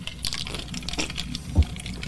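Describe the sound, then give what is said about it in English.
Liquid pours steadily into a glass for about two seconds during a drink break, a soft splashy trickle with one brief low thump near the end; no one speaks. “Time for a drink break.”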